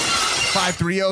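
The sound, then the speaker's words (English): Glass shatters in a loud, bright crash with a crunching, sprawling tail, quickly followed by a brief voice speaking. “Too much glass breaking at the beginning.”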